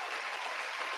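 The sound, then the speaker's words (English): A brief burst of dense, steady clapping, like a crowd's round of applause, filling the whole moment at an even level with no voices over it; a quick round of applause given as a shout-out to viewers. “I just got to give them a quick round of applause.”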